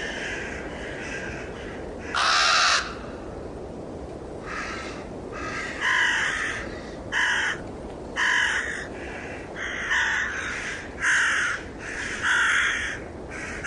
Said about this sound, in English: Right, here's a YouTube video of ravens cawing at night.